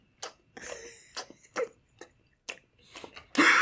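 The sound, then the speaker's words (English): Someone imitates the way a man chews with exaggerated wet mouth noises, a string of smacking, crunching bursts at an uneven pace, fairly loud, ending in a louder smack. “But I saw a video of him just Like, the way he chews is fucking nuts.”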